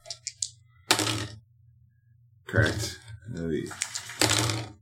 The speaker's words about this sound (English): All right, yeah, the dice are flipping me off right now, so...